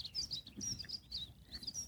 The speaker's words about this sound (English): The birds are singing. It's lovely.